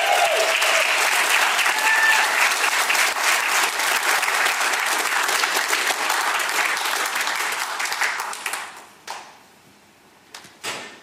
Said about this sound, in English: They clapped for you as you were exiting your aisle.